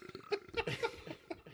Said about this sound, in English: And they belch into the microphone. Sorry, but yeah. 70s burp sound effects.